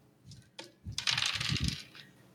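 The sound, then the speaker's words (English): Dice rolled in a tabletop game to beat a target of 5 clatter and rattle across a tabletop in a quick burst of tumbling clicks and knocks, fairly loud, then settle, with no talking. “I think you're rolling more dice than...”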